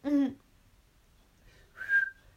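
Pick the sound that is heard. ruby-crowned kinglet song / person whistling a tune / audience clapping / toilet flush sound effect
person whistling a tune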